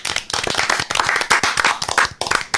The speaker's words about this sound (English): I was enjoying the applause. Sorry, I was enjoying the applause.